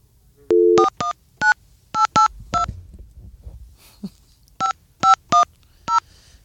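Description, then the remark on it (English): A string of short electronic telephone keypad dialing beeps, a longer first tone then about ten quick dual-tone presses in irregular bursts, with a brief pause and faint rustling midway; no one speaks. “Worst phone ever.”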